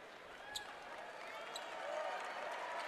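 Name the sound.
crowd applause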